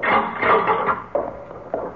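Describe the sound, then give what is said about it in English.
A heavy door swings open with a drawn-out, grinding creak, followed by a few short wooden knocks as it settles. Fairly loud, with no voices. “Door.”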